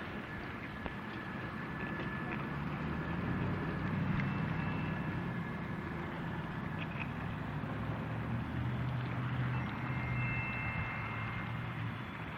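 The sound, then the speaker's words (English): A train rolls past on tracks next to an outdoor Memorial Day observance at the War Memorial, corner of Lyle Boulevard and Market Street, with a deep, steady rumble that fills the whole stretch, a thin high metallic squeal riding over the low roar. No voices are heard. “You do an event outdoors next to the train tracks, and that happens.”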